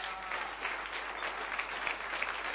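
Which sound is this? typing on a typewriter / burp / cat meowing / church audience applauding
church audience applauding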